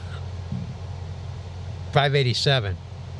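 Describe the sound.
The cab engine of a Western Star 4900 SB semi-truck, which lacks much soundproofing, drones steadily with a low, rumbling hum, constant, while a brief voice-like sound rises over it near the end.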